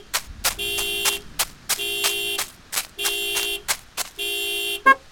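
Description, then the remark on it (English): A car alarm blares in a repeating cycle, a loud harmonic horn tone sounding in long pulses broken by short sharp chirps, with no voices over it. “What set off the alarm?”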